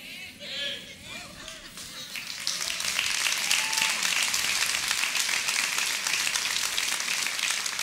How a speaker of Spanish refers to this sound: Ya me imagino a unos que están ahí, pero ¿cómo así que le va a lavar el cerebro? Y aparte aplauden.